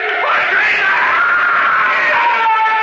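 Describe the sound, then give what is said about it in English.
A man screams loudly and continuously for about three seconds, a strained, sustained cry with a wavering pitch, alone with no other voices. “He began to scream.”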